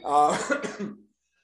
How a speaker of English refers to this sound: I got a cold 3 weeks ago, and I can't get rid of the little cough.